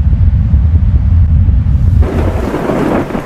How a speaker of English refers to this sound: Thunderstorms are an amazing display of the Creator's might.